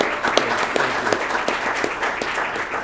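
A burst of applause from a small group, given to someone for managing interviews, steady overlapping claps filling the whole moment at moderate loudness, with no voices breaking through.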